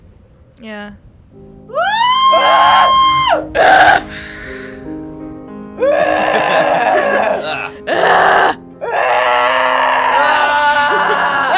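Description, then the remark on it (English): Several voices scream together, loud, in long overlapping bursts that swell and break off repeatedly for about ten seconds after a brief spoken word. “Why are you all screaming?”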